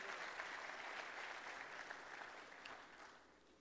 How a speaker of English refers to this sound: And I give him praise. Come on, give another clap offering of praise to the Lord.